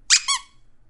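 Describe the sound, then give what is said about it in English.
A squeaky dog toy gives two quick, high-pitched squeaks in close succession, the first sharper and brighter, the second a bit longer with a wavering tone, then silence. “Can I hear their squeaks?”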